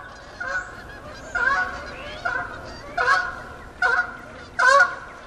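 Geese honk in a steady series of six loud, nasal calls spaced about a second apart, with a faint background murmur of more honking between them and no talking.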